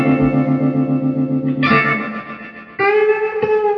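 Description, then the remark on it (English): An electric guitar plays sustained chords through a tremolo effect, the tone pulsing and shifting with a hiss of static and white noise underneath. Two chord changes, loud and steady, with no voices. “Hold on, just listen to the static on it. The white noise. Yeah, you can. Well, that's the tremolo.”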